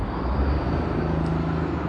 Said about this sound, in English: And in the bike lane, there's a school bus passing me on the left. Always a little intimidating when a big hunk of metal that size passes by you.